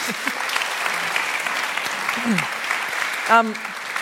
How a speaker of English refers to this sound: Excellent. Round of applause.